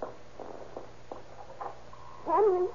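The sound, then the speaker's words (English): A dog out on a back porch lets out a brief, wavering howl near the end, rising and bending in pitch, louder than the faint murmuring sounds heard before it. “that dog is out on the back porch.”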